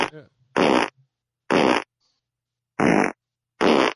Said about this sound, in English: but the feeling of running and literally every step you take, it's just a fart. And yeah, I call this one the pedometer. It's a fart for every step.